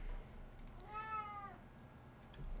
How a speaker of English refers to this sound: Oh my god. Sorry, it's my cat.